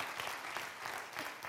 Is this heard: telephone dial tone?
no